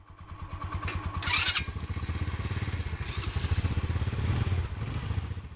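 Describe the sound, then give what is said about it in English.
Three motorbike engines run as a medical team prepares to set out in northwestern Myanmar, 30 kilometers from the India border: a rapid pulsing rumble that rises and settles as they rev, with a brief metallic clatter early on and no voices. “In one of the most northwestern corners of Myanmar, just 30 kilometers from the India border, a trio of motorbikes have gotten their engines checked and their medical packs filled as they prepare for the journey ahead.”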